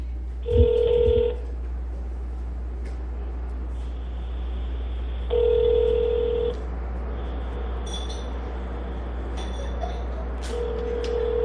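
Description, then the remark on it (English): A telephone call to Representative Gutierrez connecting: a short burst of dialing tones, then a steady ringback tone repeating in long, evenly spaced rings over a low background hum, with no one speaking. “So let's get him on the phone.”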